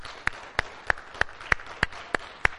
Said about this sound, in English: I know it's hard maybe, but stand up, moms. And just, we want to say thank you. So would you just give a rousing applause for our moms today?